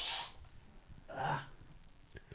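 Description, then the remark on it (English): A short, breathy sneeze caused by allergies bursts out with a sharp hiss, followed a moment later by a second airy exhale, moderately quiet, with no talking. “My allergies are strong right now, guys. Isn't it nice to fucking not automatically assume that everybody who coughs or sneezes nowadays has COVID?”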